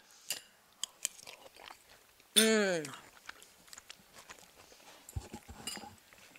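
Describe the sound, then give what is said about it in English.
Chewing a mouthful of hot, spicy fish soup: scattered wet smacks and clicks, a brief drawn-out vocal sound in the middle, then a few low, soft bumps near the end. “You have to talk while I chew.”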